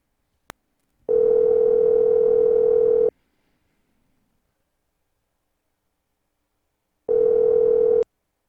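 A telephone call connects: a sharp click, then a steady buzzing ring for about two seconds, a long silent gap, and a second shorter ring. No one speaks.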